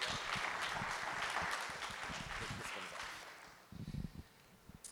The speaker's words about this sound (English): We're really excited to have him. So give him a round of applause as he comes to the stage.